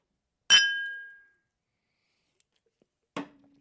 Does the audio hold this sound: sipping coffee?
no